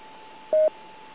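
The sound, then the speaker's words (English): A single short DTMF touch-tone beep, one dialed digit of a phone number sent through a radio autopatch, rings out clearly over a hissy, narrow radio channel carrying a faint steady hum, with no talking. “Are you willing to dial the number and let him take the call?”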